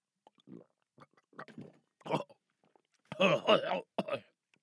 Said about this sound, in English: Could I ask for a single kindness, though? If you could pour some water into my mouth.